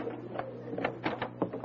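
A front door is unlocked and opened, with a quick series of clicks, rattles and clunks from the latch and handle over a low steady hum. No one speaks.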